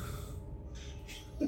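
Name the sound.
voice imitating snoring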